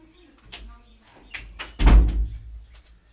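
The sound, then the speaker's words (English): A door swings shut with a solid thump partway through, preceded by faint shuffling and small handling noises, then a brief low rumble as it settles. “wait, let me close the door.”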